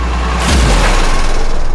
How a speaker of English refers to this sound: The fire engine slams into Elmero, and the celebrity chef explodes in a shower of grody alien blood, fat, and bone.